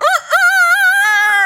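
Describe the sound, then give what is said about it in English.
A person imitates a rooster's crow: a short rising yelp, a brief break, then one long, loud, held call with a slight waver, alone with no other sounds. “Okay, they have like the state bird, the rooster.”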